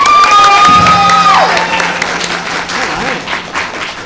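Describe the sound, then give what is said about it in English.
Loud audience applause, a dense wash of clapping with some cheering and a whistle near the start, sustained throughout before tapering slightly, as the audience votes for Ant-Man and Wasp. “If it's Ant-Man and Wasp, applaud now.”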